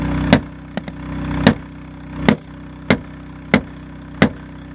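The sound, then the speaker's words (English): At night, someone breaking into a car strikes its window again and again, about seven sharp, loud blows spaced under a second apart, over a steady low engine hum, without a clear shatter. “It takes a while before the window finally breaks.”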